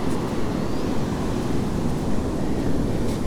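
A steady, rumbling roar of surf washing onto Gwynfor Beach, continuous rather than broken into distinct crashes, with a breezy outdoor hiss over it and no voices.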